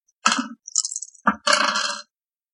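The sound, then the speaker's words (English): Four dice rattle and clatter across a hard table in a few quick bursts, fairly loud, then settle into silence. No one speaks. “All right, four dice. Two hits.”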